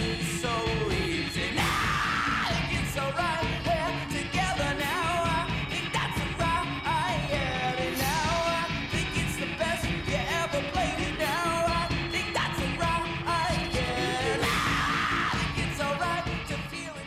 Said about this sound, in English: You get his kind of regular syrupy sort of vocals going into the screaming vocals, which I think actually works really well on this.